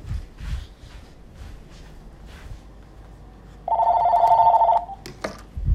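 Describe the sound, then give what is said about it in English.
A phone rings once, a single loud electronic trill lasting about a second, after quiet rustling and low background noise. A few sharp clicks and knocks follow. “I'm fucking turning this stupid fucking phone off.”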